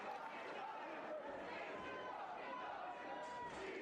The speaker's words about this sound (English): Wow, nice chant from the crowd.